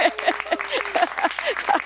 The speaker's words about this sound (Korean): 여기서 박수 한 번 좀 주셔야 되는데 예, 아이 고맙습니다.